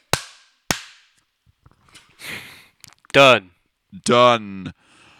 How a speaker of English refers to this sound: If I clap now, there's no fucking point. There's no sync.